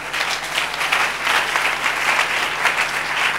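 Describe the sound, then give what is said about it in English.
Sustained applause from a large crowd clapping for Jesus during worship, dense overlapping claps at steady, fairly loud volume with slight swells, no voices standing out. “Are you clapping for Jesus?”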